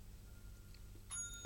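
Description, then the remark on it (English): A hand bell rings once near the end, a bright metallic strike whose high, clear tones linger briefly over a quiet, low background hum. “We got a bell.”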